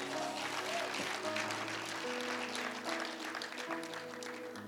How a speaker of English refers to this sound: Hallelujah. Clap for Jesus.